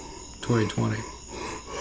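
Two deep, heavy breaths using the whole chest in quick succession, each a loud, low, throaty exhale with a voiced rasp, followed by quiet background hiss.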